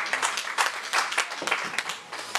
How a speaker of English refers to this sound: Come on, if you're gonna clap, you can clap for real.